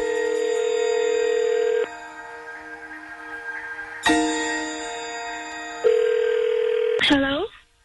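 A steady electronic telephone dial tone hums for a couple of seconds, then gives way to repeated ringing bursts on the line as a phone call is placed, ending in a short warbling glide before cutting off. Fairly loud.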